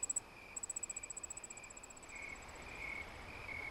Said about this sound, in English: That constant trill is a Carolina ground cricket.